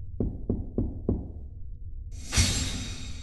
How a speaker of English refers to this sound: As the Combination Memorial and Group Bitch Session continues in the bioswamp, at Airlock 56, there's a quiet knock on the door.